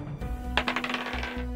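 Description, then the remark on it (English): A die is rolled across a hard tabletop during a game, a quick burst of sharp, bright clicks and rattles that tumble irregularly for under a second before it stops on a 3, over a low steady hum. “Roll that die.”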